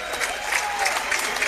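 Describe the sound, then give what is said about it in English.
A large Jacksonville crowd rises to its feet and applauds steadily, the dense clapping a continuous wash of noise with a brief cheer or whistle faintly above it, congratulating its girls' team after it wins a regional championship 58-46 over the Bethesda Christian Patriots. “And this Jacksonville crowd rises to its feet to congratulate these young ladies as they have won a regional championship, and they head to semi-state.”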